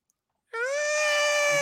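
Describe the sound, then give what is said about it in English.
A talkative, calico-like cat named Maya lets out one long, drawn-out meow that starts abruptly after a brief silence and holds a steady, fairly high pitch, loud and alone with no talking. “Y'all need to get a calico. We got something close.”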